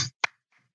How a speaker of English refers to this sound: Because we still do that. We call it the Gullah clap. You know, so a lot of that has been retained from Africa, from the praise house, you know, and you still have that going on.